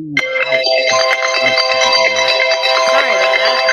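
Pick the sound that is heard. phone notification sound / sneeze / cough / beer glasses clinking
phone notification sound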